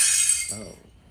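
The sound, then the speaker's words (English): A plate smashes in one quick, bright crash of shattering ceramic lasting about half a second, followed briefly by a short voiced sound before it fades. “Oh, a plate smashing.”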